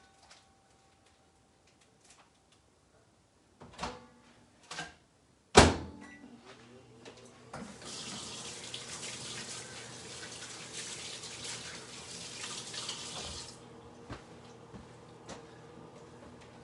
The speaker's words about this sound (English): So it's the same. 2 minutes, 30 seconds. That's like the max. All right, so here we go. I'm gonna throw this in the microwave.